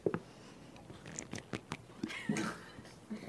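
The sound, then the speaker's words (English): A comedian drinks water during a stand-up set: a string of quiet, irregular wet clicks and slurps with a few short gulping swallows, low in level and with no talking. “So if you don't mind, I'm just going to enjoy some water real quick.”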